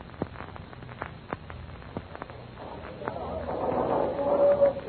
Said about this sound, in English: But shortly after Flash guides the Johnson to Landers, shots are heard near the harbor entrance. The pirate fleet is returning.